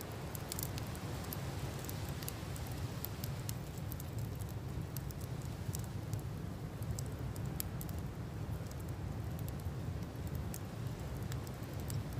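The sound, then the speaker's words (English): Sporadic sharp crackles and tiny clicks from an aurora, like static electricity, scattered irregularly over a steady low rushing hiss for the whole stretch; no voices. “Every so often, a little crackle accompanies, like static electricity.”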